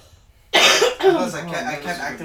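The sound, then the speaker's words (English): A woman's sudden burst of harsh, raspy coughing after smoking breaks a brief quiet and carries on for a couple of seconds, loud, with rough, strained throat sounds trailing between the hacks. “Yeah, if she's coughing, it's gonna be harsh.”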